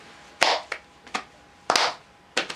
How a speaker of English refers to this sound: Let's play a game, ready? Clap your hands.